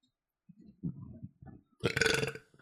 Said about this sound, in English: So. That came through pretty good, that burp.